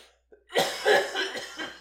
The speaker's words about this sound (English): Excuse me. That's it. That's all. That's it. That's the last cough. That's it. Done. We're done. No, okay. I'm not coughing anymore.